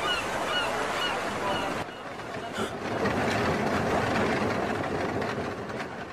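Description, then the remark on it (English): Gulls cry out repeatedly over a dense, steady wash of harbor noise at the port city of Argilis, their calls prominent at first before blending into the constant rumble of the busy waterfront. “Cogs and gulls.”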